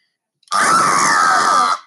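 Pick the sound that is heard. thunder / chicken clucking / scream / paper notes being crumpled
scream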